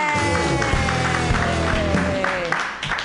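A comedy show audience bursts into applause and cheering for a comedian, a steady wash of clapping with whoops and shouts riding on top, loud and sustained for the full few seconds before easing slightly at the end.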